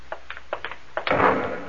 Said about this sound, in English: That came from the ship. Another flare? No, that was an explosion.